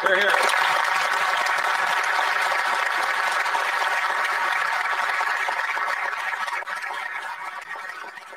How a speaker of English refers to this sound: And that is applause for democracy.